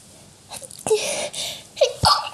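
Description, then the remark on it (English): A single sharp sneeze bursts out with a quick breathy intake before it and a brief gasp and exhale trailing after, loud and abrupt against otherwise quiet surroundings. “Anyway, ignore my sneeze.”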